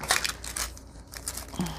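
Crisp crinkling of a handmade tracing paper bag as it is handled, a string of dry crackles and rustling bursts without any voices.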